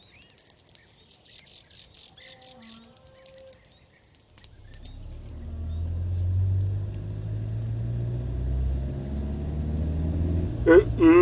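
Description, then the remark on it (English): Birds chirp briefly in quiet surroundings, then the engine of a stolen car starts up and a loud, steady low rumble takes over as the car drives along the road, with a few high chirps near the end. “Out of all the cars you could have stolen, you had to choose this one.”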